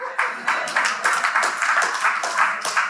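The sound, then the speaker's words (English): Sparse, uneven, reluctant clapping from a small church audience: scattered, reverberant claps that never settle into a steady rhythm, moderately loud, with no voices over them. “That was the most reluctant clap in church life history.”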